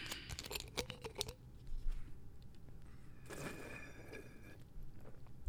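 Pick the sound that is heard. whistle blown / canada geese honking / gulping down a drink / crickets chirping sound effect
gulping down a drink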